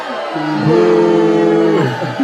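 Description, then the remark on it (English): A single voice lets out a long, drawn-out "boooo," imitating a booing crowd. It is loud, holds steady for about a second, then trails off. “Do you hear that? That's the booing of everybody in the world booing you.”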